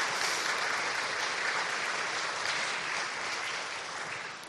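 A crowd applauds someone who has just spoken. The steady, dense wash of many hands clapping stays at an even level and tapers off slightly toward the end.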